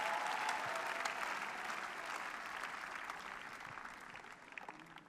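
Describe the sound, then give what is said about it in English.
A large crowd applauds steadily for Jesus Christ, a dense wash of clapping that holds strong throughout and slowly tapers slightly toward the end, with no voices standing out. “Put your hands together for Jesus Christ.”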